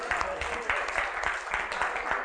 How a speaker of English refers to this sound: We can go ahead and clap. Let's go ahead and clap our hands to the Lord. Yeah, let's go ahead and clap. That's a good clap point.